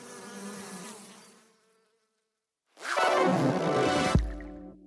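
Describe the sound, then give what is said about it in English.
Bees buzz in a steady droning hum, fading out briefly into silence before a louder, denser swarm of buzzing returns and continues to the end. “So we need to make sure we keep an eye on the bees and their behaviour, because if they all buzz off, we're going to be in trouble.”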